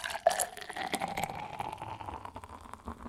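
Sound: liquid being poured out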